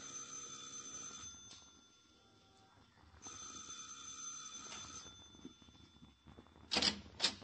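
A doorbell rings twice in loud, steady bursts of a second or two each, with a pause between, as police call at a man's door, followed by a couple of sharp clicks or clacks near the end. No talking.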